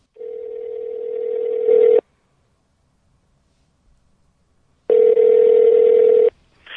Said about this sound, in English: And why don't we dial up the phone? Fantastic.